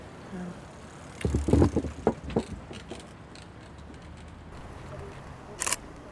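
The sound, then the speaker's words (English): Camera shutter clicks while photos are taken of an overgrown wildlife habitat area: a quick cluster of sharp mechanical clicks, then a pause and one crisp, brighter click near the end, all over a low, steady background hiss. “Yeah, I'll just take a few photos around here.”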